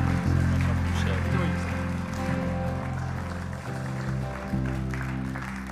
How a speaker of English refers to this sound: But before he encourages you, why don't you give him a massive big hand and a massive big cheer as he comes. Fantastic.